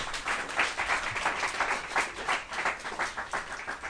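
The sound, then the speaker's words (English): A crowd applauds as a clap offering to the Lord, many hands clapping steadily for a few seconds in a dense, even patter with small swells in loudness and no voices over it. “Would you give the Lord a good clap offering?”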